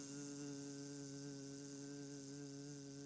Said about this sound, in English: There was a moment where I was sitting in the barber's chair and they had the clippers going around my general ear region, as you can tell. Who's ever had the head shaved? You know the buzz that I'm talking.